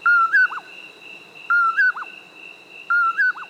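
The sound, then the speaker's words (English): A common poorwill calls three times at steady intervals, each a clear two-part whistled phrase, distinct over a faint continuous insect drone. “It's the common poor will, a nocturnal hunter of insects. The easiest way to locate this species is to listen for its call.”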